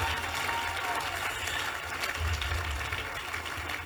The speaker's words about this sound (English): Oh, look at the way you are clapping.